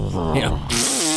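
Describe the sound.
A person makes a fart noise with their mouth: a short voiced buzz that turns into a loud, breathy raspberry, on its own.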